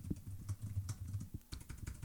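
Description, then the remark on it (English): Rapid clicking of keys on a computer keyboard, a steady flurry of crisp taps with no voices. “This is like a typing game for me.”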